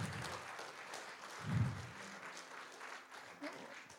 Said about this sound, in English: Not for ourselves, but for those who gave their lives to the Lord or got right with Jesus, let's give them a hand clap this morning.